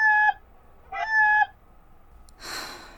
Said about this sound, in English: That's your lot in life, dear chicken. I'm so sorry.